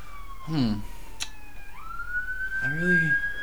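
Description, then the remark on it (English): An emergency siren in Salem holds a steady, slowly rising wail in the background throughout, while people speak briefly in the foreground over it. “We got the sounds of Salem in the background. Oh, the sounds of Salem. Sirens and trains.”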